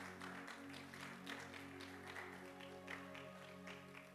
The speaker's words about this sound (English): Oh, you can clap for Jesus at this point.